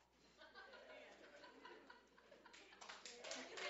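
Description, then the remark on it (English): A crowd murmurs and chuckles, then scattered applause from the married women in the audience builds into a dense patter of clapping, fairly quiet, with laughter mixed in. “All the married ladies are clapping on that one.”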